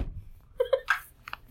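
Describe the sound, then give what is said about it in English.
A voice makes a quick series of short, punchy vocal bursts, three close together then a couple more, imitating a small package of granulated sugar thumping down on a counter. “Listen to the sound effect of it thumping on the counter.”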